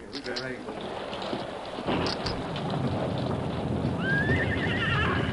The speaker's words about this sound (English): And the worst of it is it's starting to rain.